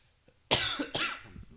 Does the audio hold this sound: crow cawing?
no